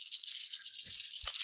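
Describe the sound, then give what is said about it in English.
Dice rattle in a steady, bright clatter for the whole moment, with a couple of soft low knocks near the end as they tumble and settle. No one speaks. “What else am I gonna roll on this?”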